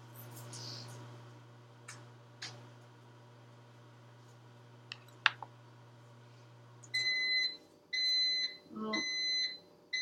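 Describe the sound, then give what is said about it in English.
A smoke alarm sounds a false alarm in loud, shrill pulsing bursts, three distinct blasts near the end, after a steady low hum and a few scattered clicks and clatters, while hot buttered rum is being made. “Was a false alarm.”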